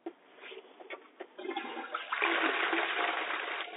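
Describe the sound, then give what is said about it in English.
A toilet flushes: a few clunks and splashes, then a loud, steady rush of water that swells and keeps going to the end, with a thin, muffled, phone-like tone and no talking. “Hang on, I'm just going to go to the bathroom here.”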